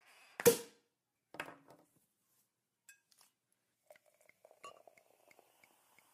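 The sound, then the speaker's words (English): A loud sharp burst and a softer rattle, then scattered light glass clinks and taps as sparkling wine is poured. Quiet between sounds, with no talking. “Oh, a little bit of the bubbly.”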